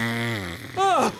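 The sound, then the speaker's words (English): A voice imitates a scary fart, starting with a low buzzing drone and ending in a short, wavering, rising-and-falling burst, fairly loud, lasting just over a second. “Can you make him do fart noises? …, fart noises. Like make, but like a scary fart.”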